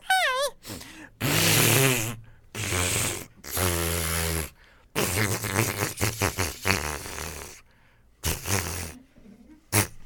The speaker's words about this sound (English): Take a peek in that napkin you just used to blow your nose.